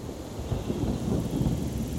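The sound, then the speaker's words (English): Steady rain falls in a patch of forest near a village, a dense, continuous wash of noise with a deep low rumble underneath, even throughout, with no voices. “And as we walked in, it started raining, which is perfect because that's when these frogs start calling.”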